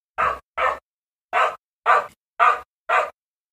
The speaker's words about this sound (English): Dog. Hang on, I'll wait until he's buggered off.